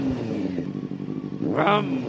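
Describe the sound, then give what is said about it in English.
A voice imitates a revving engine, a buzzy motor drone held for a couple of seconds that surges upward in pitch near the end, fairly loud with no other talk. “By the way, I was trying to beef up the revving, everybody.”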